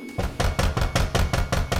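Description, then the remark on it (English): Rapid knocking on a locked door, roughly eight dull, heavy thuds in a quick, steady rhythm, fairly loud and with no voices. “He then tried knocking and calling out.”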